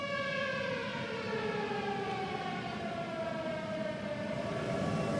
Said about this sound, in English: Зараз ви чуєте сирену? Yes, I can hear the siren.